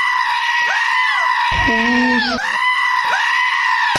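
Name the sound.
goat bleating sound effect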